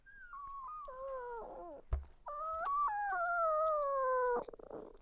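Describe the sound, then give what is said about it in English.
A female dog in labor, in pain while delivering her first puppy in a whelping pen during her first litter, howls in two long, wavering cries, the first sliding downward into a whimper, then a brief thump before a second sustained, mournful howl. “The first puppy was a little difficult. She, howled a lot. She was in pain, and he was a really big puppy when he finally came out, and so that could have been part of it.”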